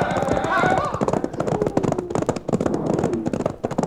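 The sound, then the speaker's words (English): Horses gallop, their hooves pounding in a rapid, continuous clip-clop rhythm that stays loud throughout, with indistinct voices briefly rising over the hoofbeats near the start. “Turn those horses, boy, and let's get out of here!”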